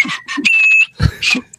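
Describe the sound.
A man whistles a short melody while coming home from a day's work: a few quick notes, then one long held tone, followed by a couple more breathy whistled phrases.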